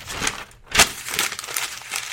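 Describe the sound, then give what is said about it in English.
A sheet of paper with notes is crumpled up, a dense burst of crackly, crinkling rustles with one sharper crunch partway through, and no voices. “Well, that was a piece of paper. I had some notes.”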